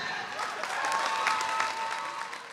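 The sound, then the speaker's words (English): A large crowd of fans, family and recruits applauds steadily in a packed gym as the Huntington Hawks present their 2023 wrestling team. Dense clapping with a few faint whistles or cheers rising above it, continuous and fairly loud throughout. “In a gym packed with fans, family, and recruits, the Huntington Hawks give the crowd a look at their 2023 wrestling team.”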